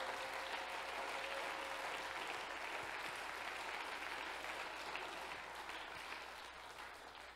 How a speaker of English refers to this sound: Praise the Lord. Could you clap your hands loud for Jesus?